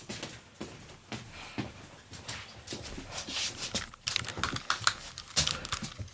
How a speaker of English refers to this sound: we can hear the rain pelting on your window. Yeah, it's horrible.